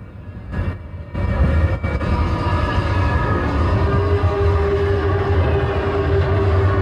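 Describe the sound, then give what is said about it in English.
A roller coaster train on the Expedition Everest ride rattles along rickety tracks, a loud continuous clatter over deep rumbling and a faint whine, briefly dipping near the start before holding steady. “I was just listening Jeff's to the rickety back. Train tracks.”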